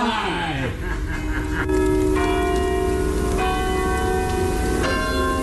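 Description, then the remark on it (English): The Shandon Bells ring out in a sequence of loud, resonant strikes, each tone lingering and overlapping the next, with a faint murmur of voices in the background. “on his trip to Shandon yesterday, ringing the bells”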